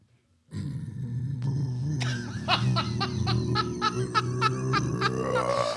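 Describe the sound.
A loud death metal growl: one deep, guttural voice sustains a raspy roar for several seconds, with rhythmic gritty pulses breaking through in the middle.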